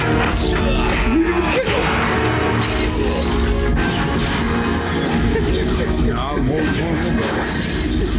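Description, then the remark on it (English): A body crashes loudly into a pile of boxes, one of them holding glass, with glass shattering amid the impact, a dense, sustained clatter of breaking and tumbling debris, with voices and gasps mixed in. “Like they knocked him into a bunch of barrels or crates or something.”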